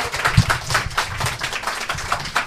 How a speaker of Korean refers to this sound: 박수로 모셔보도록 하겠습니다.